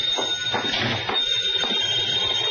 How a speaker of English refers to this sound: As I walked in the door, the phone was ringing.